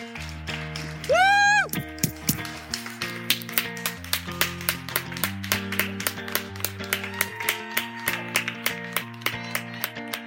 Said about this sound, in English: That was a big clap out that was organised for the National Health Service workers as a way of saying thank you for all that they do for looking after people with coronavirus. And everyone out on the street was just clapping,